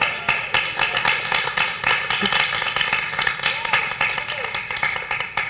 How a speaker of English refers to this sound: Wow. Round of applause.